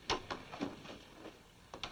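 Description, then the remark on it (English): A door is pushed shut with a few clattering knocks and creaks, ending in a sharper double thud of the latch catching; no voices. “Come in and close the door.”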